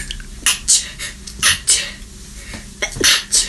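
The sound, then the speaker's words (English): A squeezed novelty toy lets out a recorded sneeze sound three times, each a quick hissy double burst, loud, with no talking between them. “That's the noise it makes when you squeeze them.”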